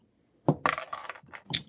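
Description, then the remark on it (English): A short burst of clattering and rustling as dice are pulled from a bag, several quick knocks and rattles over about a second, with no talking. “Move the dice from the bag.”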